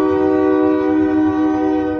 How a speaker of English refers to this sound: I live 200 feet from train tracks, if you can hear those. Oh, yeah. Dude, I love it. Dude, it picks up beautifully, too. Great ambiance.